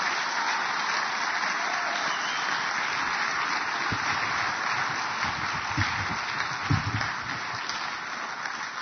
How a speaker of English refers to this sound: So let's come on, you two sit down. Let's give them a big clap as they go down. Thanks.